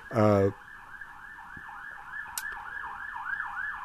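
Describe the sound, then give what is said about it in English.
A wailing emergency vehicle siren rises and falls in steady repeating sweeps outside, preceded by a brief loud horn-like blast at the start. “Here's the siren now.”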